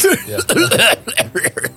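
A fairly loud run of harsh, throaty coughs, four or five bursts in quick succession with a strained, voiced edge, almost laugh-like, from someone coughing after laughing, and no talking.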